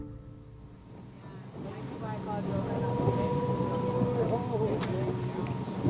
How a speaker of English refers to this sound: steers the small boat out onto the water. The people on board will become quite chatty later, but for now, everyone is quiet. It's a spectacular feeling to be out on the hazy blue-gray water.